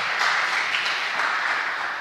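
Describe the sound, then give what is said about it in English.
A church audience at St. Mark's applauds steadily after an announcement of a couple's 20 years of marriage, a dense wash of many hands clapping at a constant moderate loudness for about two seconds, with no voices standing out. “Some of you started clapping and you know us, and thank God he did that.”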